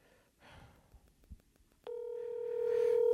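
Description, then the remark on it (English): A phone call's electronic tone begins partway through as a call is placed from a phone, a steady, continuous beep that holds loud and clear to the end, following a few soft taps and rustles. “We're calling”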